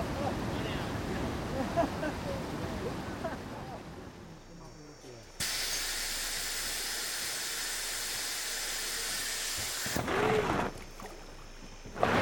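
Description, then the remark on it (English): Rushing river rapids roar steadily, a dense hissing wash of churning water that surges and shifts abruptly in intensity as a lone boatman's raft carrying food and gear takes a beating and flips, with faint indistinct voices of onlookers on a cliff mixed into the noise. “The last boat takes a beating and flips.”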